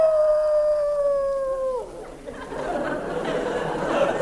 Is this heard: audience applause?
no